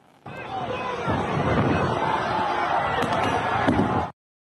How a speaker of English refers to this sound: It was shot by somebody who was there. And you'll notice there's kind of font all over it, but it shows a flash grenade being thrown into a crowd. Watch.